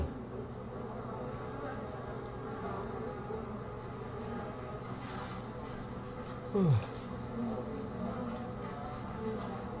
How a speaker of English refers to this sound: Oh. Of course. Bees.